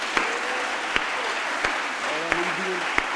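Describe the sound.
An audience gives the Lord a hand clap in a dense, steady roar, punctuated by five sharper beats spaced at a regular, roughly even rhythm, with faint voices rising beneath the applause.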